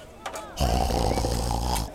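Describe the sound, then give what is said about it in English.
A person imitates giant frogs snoring: a couple of quick breathy sniffs, then a long, loud, deep rattling snore held for over a second. “Oh, the frogs were now as big as mountains. Huge, terrifying. And they were asleep, snoring.”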